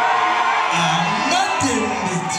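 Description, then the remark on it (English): An audience at Symphony Space in New York City, many of them Congolese, cheers and whoops loudly and steadily, with shrill rising yells and shouts piercing through a dense wash of voices. “finding a warm welcome from the audience at Symphony Space in New York City, with many Congolese in the crowd.”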